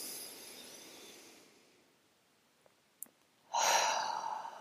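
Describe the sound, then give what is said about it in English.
A long, breathy exhale fades out, followed by a brief quiet pause with a couple of faint mouth clicks, then a loud deep breath in begins, part of a deep-breathing exercise to let go of a fear thought. No one speaks. “Really deep breath in. Breathe out that fear thought.”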